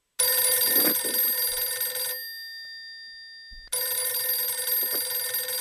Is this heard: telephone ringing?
yes